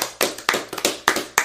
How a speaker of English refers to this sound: Let's clap that completion real quick.